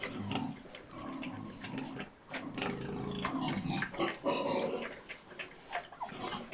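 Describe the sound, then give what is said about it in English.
Pigs grunt and snuffle continuously while feeding, with wet chomping and slurping mixed in; the sounds are busy and overlapping, with no talking. “Okay, so this is pigs feeding. So it's the original first.”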